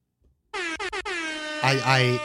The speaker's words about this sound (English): I asked explicitly to have the air horn things removed because it's cliche, and I don't want that.